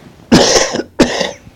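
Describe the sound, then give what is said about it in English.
Two harsh coughs in quick succession, each a sharp burst that trails off, loud and clear with no talking around them. “And I just say I'm sorry for having to cough every now and then through here, but we'll make it through by God's grace.”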